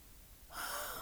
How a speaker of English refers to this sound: I just had to yawn again. I'm so sorry. It just goes to show how tired I am.